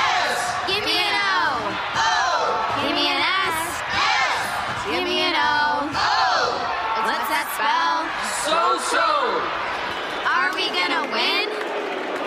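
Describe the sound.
Cheerleaders' high, energetic voices chant and cheer together in loud rhythmic bursts, with whoops and shouts overlapping steadily throughout, in an AT&T wireless network radio advertisement.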